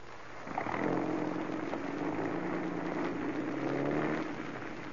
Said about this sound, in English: Here comes our guy. Swell. He's getting into the car now. He's rolling. Let's go.